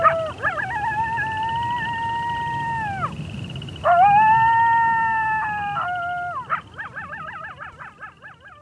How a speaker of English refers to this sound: What did you feel when you listened to these coyotes? I often hear the coyotes in the distance. In the recent few months, the coyotes became really, really close to my house.